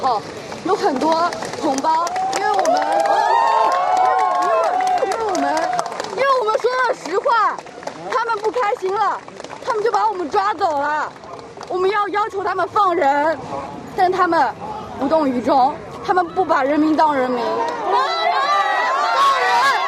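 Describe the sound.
A dense crowd of protesters against zero-COVID rules rises and falls together chanting "Free the people," with sharp clapping scattered throughout as they applaud a young woman for speaking, loud for the whole stretch.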